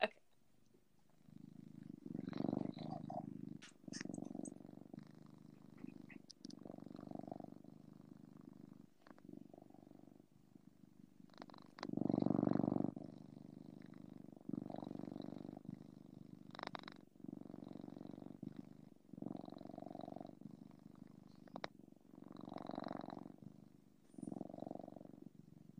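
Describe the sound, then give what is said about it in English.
A domestic cat named Mushu purrs into the microphone, a steady rumbling purr rising and falling in rhythmic pulses with each breath, continuing for about twenty-five seconds with no talking. “I just had Mushu purr into the microphone while you were gone.”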